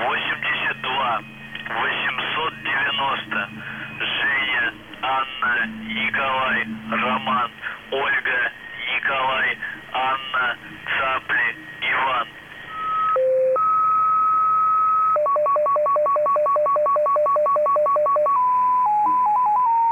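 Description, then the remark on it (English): A shortwave radio transmission from April and July 2021 with a constant hiss of static: garbled, warbling voice-like sounds give way to steady electronic tones and a rapid run of pulsed beeps, all thin and band-limited. “These are transmissions from UVB 76 from April and July of 2021. And again, mostly static until you start hearing stuff like this.”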